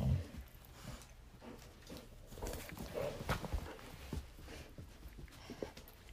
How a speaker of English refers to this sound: Well, actually, Addie is still growling, but she's squeaking the toy in her mouth as well. So her mouth, when she's growling, you hear rawr, rawr, rawr, rawr, as it's...